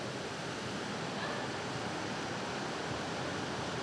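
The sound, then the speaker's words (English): Heavy rain drums on a tin roof in a dense, steady roar of hissing patter, loud and unbroken throughout, with no voices. “So I'm not yelling at you just to get over the sound of the rain.”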